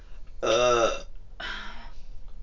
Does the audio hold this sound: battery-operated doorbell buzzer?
no